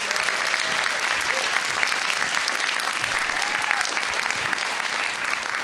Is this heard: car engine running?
no